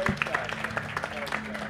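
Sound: audience applause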